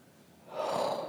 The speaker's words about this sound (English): It's just me breathing heavily into the mic.